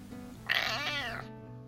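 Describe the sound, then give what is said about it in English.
A single drawn-out meow from the pet cat Sasha, fairly loud, rising and bending in pitch for under a second before fading, with a low steady hum underneath and no talking. “Well, I still have the cat.”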